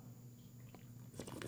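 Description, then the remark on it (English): A quiet sip of Fresh Squeeze IPA beer from Deschutes Brewing: a faint slurp followed by a few soft, wet mouth clicks over low background hum, with no talking. “See, we have a fresh squeeze IPA from Deschutes Brewing, and here's a little sip.”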